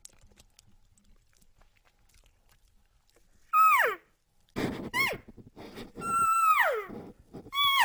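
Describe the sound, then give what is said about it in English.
After a quiet stretch, a series of imitated elk cow calls: short high chirps and several longer, sweet mews that slide downward in pitch, fairly loud and without talk. “But I'm just going to use those herd chirps and those sweet mews that aren't hard to do, man.”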